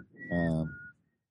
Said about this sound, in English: What was dirty? Your whistling sound. That it is reminded, dirty.